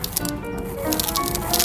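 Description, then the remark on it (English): Rice being shaken by a sound effects man to mimic rain: a steady, dense hissing patter with brighter rattling surges near the start and end, no voices over it. “That's rain.”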